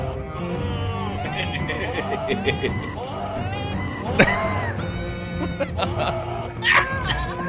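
Several goats bleat back and forth in a busy, overlapping chorus of wavering, nasal calls. A few sharper, louder cries stand out partway through.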